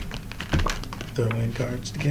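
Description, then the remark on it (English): A deck of cards being shuffled, a quick burst of crisp flicking and papery clicks, with a voice talking over the latter part. “Alright, gonna shuffle again, shuffle.”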